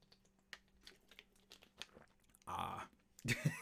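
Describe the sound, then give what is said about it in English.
A plastic Deer Park water bottle crinkles and crackles in quick irregular bursts, then a louder sustained rustle, followed by soft gulping sounds of someone drinking during a water break. “Please enjoy the soothing sounds of Deer Park water.”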